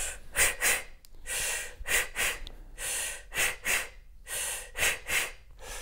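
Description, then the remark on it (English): Forceful breathing exercise called the poof poof: after breathing in with the belly out, short, sharp puffed exhales in quick pairs like blowing out two birthday candles, repeated steadily, each a breathy hissing burst with brief inhales between. No talking. “Yeah, and then blow out two birthday candles.”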